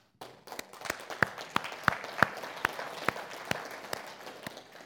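An audience claps together in thanks to God during a church celebration, a dense wash of applause with sharper claps landing in a steady, even beat throughout. No one speaks over it.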